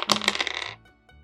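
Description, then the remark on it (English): Dice clatter and rattle across a hard table in a quick burst of sharp clicks as a damage die is rolled twice, then settle into quiet after under a second. No one speaks. “So yeah, you're gonna roll your damage die twice.”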